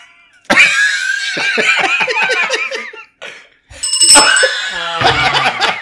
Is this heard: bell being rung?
yes